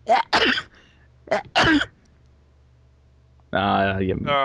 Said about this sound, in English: I thought there was one more, but sadly fell short by at least 4 or 5 sneezes there.